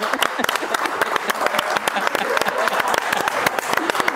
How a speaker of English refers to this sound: You did that. That's a hand clap. You did that.